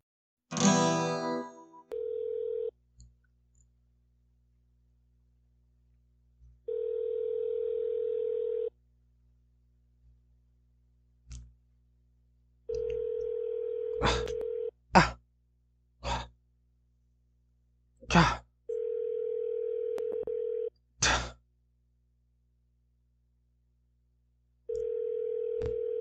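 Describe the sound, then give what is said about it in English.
A phone line rings out with a steady low ringback tone on a call to Comfort Suite, repeating five times in long evenly spaced pulses, while someone sighs and breathes heavily between the rings. “Come on, answer the goddamn phone.”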